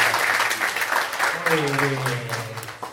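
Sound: applause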